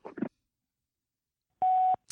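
A single loud, steady phone keypad tone lasting about a third of a second, preceded by a couple of short muffled bursts and followed by a brief sharp click, with silence in between.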